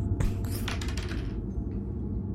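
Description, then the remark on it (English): Dice clatter across a hard table in a quick burst of small clicks lasting about a second, then settle. A low steady hum continues underneath. “I'm not switching off of this fucking dice. I'm on today. 4. Roll an attack again.”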